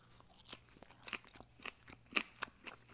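Crisp, crunchy chewing of salad, with about a dozen sharp bites and crunches in an irregular rhythm, fairly quiet, with a low steady hum underneath and no talking.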